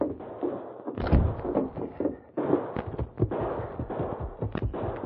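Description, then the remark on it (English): A rapid, sustained barrage of gunshots on Main Street, sharp cracks and booming reports piling over one another with echoing rumble, loud for several seconds with no voices. “Sounds like... Gunfire. It was over on Main Street.”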